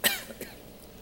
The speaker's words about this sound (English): Sorry about that coughing.